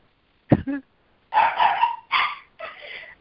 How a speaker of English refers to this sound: I have to point my finger at my dog. There he goes.